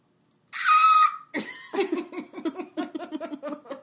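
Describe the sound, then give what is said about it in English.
A person lets out a loud, shrill, half-second vocal screech imitating a creature's cry, followed immediately by several seconds of rhythmic, breathy laughter. “Harry opens the egg and it screeches. Like this? How can I do like a scream without being very offensive?”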